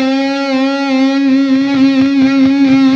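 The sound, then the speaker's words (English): A single loud, distorted electric guitar note sustains for about three seconds, its pitch wavering in a bent vibrato, made by pulling the string, pushing it over and pulling it back, that never settles back to the original note. No voices. “If for some reason you find yourself, here's our static sound, you pull the string, and then you push it over, and then you pull it back, you're never coming back to the static pitch.”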